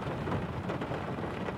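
Steady, dense rain hisses without a break at night on the back streets of Surfers Paradise, with a low rumbling undertone that could be thunder. No voices are heard.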